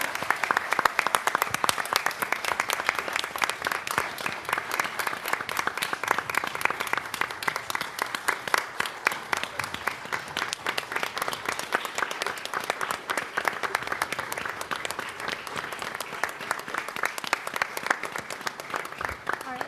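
A crowd applauds in a dense, steady wash of many overlapping hand claps, loud and sustained for about twenty seconds with no talking, tapering only slightly near the end, honoring a retiring library director at a city council meeting.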